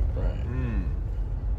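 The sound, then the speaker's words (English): A steady low rumble fills the inside of a car parked by a fire hydrant in Phoenix, constant, with a brief stretch of someone speaking over it near the start. “We're in the car, right?”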